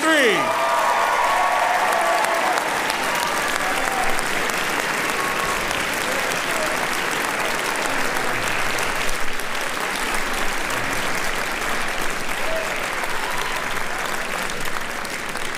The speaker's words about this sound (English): Round of applause for the class of